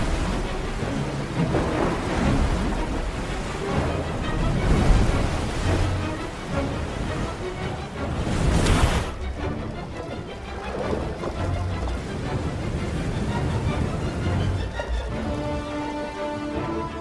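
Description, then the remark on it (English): A loud, steady roar of rushing floodwater pouring out from opened floodgates during a demonstration of flood protection products, churning continuously with a brief stronger surge partway through and no voices. “That water is rising fast, but our flood protection products are holding tight.”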